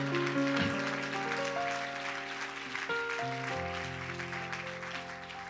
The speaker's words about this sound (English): Can you clap your hands one more time?